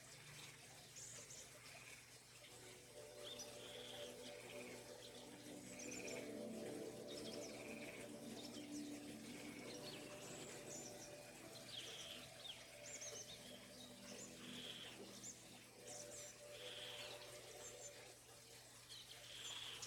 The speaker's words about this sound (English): Exotic birds, insects, and other creatures dart about high overhead.